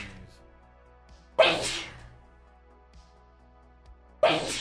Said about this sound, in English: I'm about to sneeze.